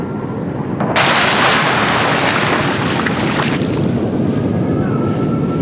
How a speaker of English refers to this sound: And with a huge gust of wind, the raft had flipped over.